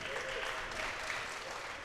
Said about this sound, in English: Thank you so much for joining us, Facebook World, and everybody here at Austin East Siders. Give yourself another round of applause for showing up and showing out.